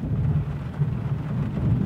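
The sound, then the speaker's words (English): Steady rain drums on a roof beneath a deep, continuous rumble of thunder, the whole wash of sound dense with no voices. “A bit of rain on roof getting mentioned.”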